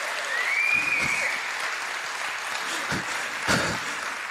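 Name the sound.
audience applause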